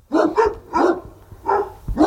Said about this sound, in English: I hear dogs. I'm in the right place.